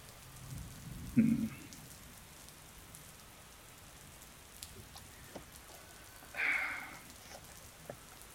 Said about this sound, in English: We should probably get out of the rain, maybe.